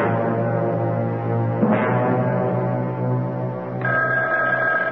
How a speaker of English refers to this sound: Oh, my goodness. That telephone never seems to stop ringing. Ever since the boys were in that plane accident, people have been calling to talk to him.